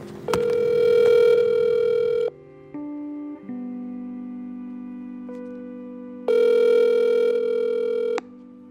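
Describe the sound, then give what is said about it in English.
A phone call to a mother in Silver Spring, Maryland connecting: steady electronic ringback tones alternate with bursts of brighter, harmonic ringing, repeating in long regular cycles, clear with no voices. “I am just about to call my mom.”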